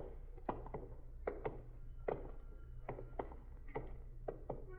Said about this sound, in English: What's that? What's what? That knocking. I don't hear any knocking, Sergeant. Stop now. There it is. Sounds like somebody hitting a window.